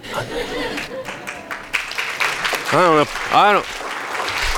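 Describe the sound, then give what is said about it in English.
An audience applauds with a steady, dense patter of clapping, joined by a couple of loud rising-and-falling vocal whoops or cheers partway through and some crowd murmur. “I got people who've been here before you that wouldn't clap at that.”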